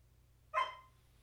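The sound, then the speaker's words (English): A female dog lets out one sharp bark that rings briefly and fades, with no talking, over a faint low background hum. “One of the questions of my AMA was like, how's the dog?”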